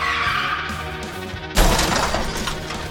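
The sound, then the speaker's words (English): A sustained, screeching tire skid runs for about a second and a half, then a loud car crash hits with shattering, crunching debris that rings on briefly afterward. “I know the first car crash would have jostled even you up.”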